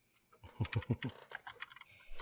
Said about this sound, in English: All right, what's tonight's topic? I'm going to type it in.